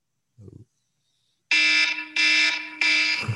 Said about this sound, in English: is that our timer? That's our time. First time hearing it through the studio mic. Ooh. It's definitely louder.